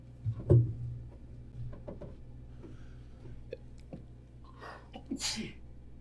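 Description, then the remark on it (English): A sharp sneeze bursts out near the start, followed later by a second, breathier sneeze with a hissy edge, over a low steady hum and no talking. “I was sneezing.”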